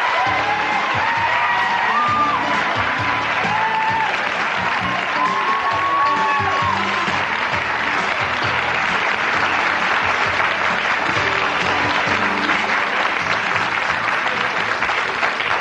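An audience applauds loudly and steadily for the full stretch as guest Billy Dee Williams comes out, with scattered cheers and whoops rising above the dense clapping early on. No one speaks over it.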